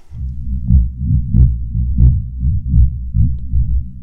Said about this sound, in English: I want you to listen to a sound and guess what it is. Yeah, it does sound like a heartbeat, but it is not. It is the seismic sound of an elephant walking, the vibrations in the earth. Let me play it again.